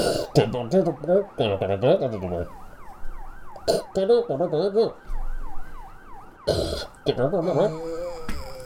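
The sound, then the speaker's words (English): Emergency sirens, drawing closer, wail in a rapid, repeating up-and-down sweep throughout, fairly loud and steady, while people talk and shout over them in bursts. “and you can hear the sirens are now even closer.”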